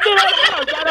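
A live turkey gobbles loudly, a rapid, warbling rattle of throaty notes that fills the whole second without pause.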